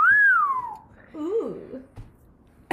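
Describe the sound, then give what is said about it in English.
A person whistles one clear note that rises briefly and then slides downward, followed by a short, lower voiced sound and a quiet pause. “Does it make you wanna whistle?”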